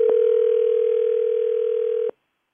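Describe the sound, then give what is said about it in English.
The outgoing ringing tone of a phone call placed by Kim and Mark of 103.1 Fresh Radio: one steady, loud electronic tone held for about two seconds, then cut off into silence. No one speaks. “If she'll pick up her phone.”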